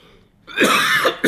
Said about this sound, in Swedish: Jäklar vad jag hostar